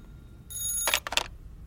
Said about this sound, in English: Oh my god, that scared me. It's just the phone. Who could be calling me at this time? Probably the front desk?